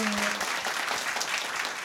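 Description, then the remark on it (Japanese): A crowd applauds steadily for the whole stretch to vote for the second answer in a quiz, a dense wash of many hands clapping at once, even in loudness. “おー、2だと思う人拍手。”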